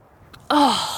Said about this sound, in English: But when he comes back up for air, the oasis has completely disappeared. There are no rippling waves in sight. Soki gasps with realization.